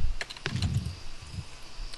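Several sharp clicks of computer keyboard typing as someone searches for a music track in Winamp, with a few quick keystrokes and irregular gaps, fairly quiet over a low background rumble. No one speaks.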